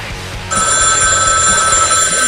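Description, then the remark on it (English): After a brief low rumble, a telephone bell starts ringing loudly and continuously, a bright, steady metallic trill that fills the rest of the moment with no one speaking. “I'm sure it's just another weird call.”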